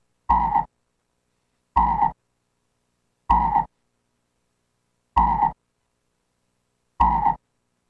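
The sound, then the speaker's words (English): A frog croaks five times at steady intervals, each call a short, loud, rasping burst separated by silence, with no other noise around it. “Some of you may want to kiss it because it's a frog.”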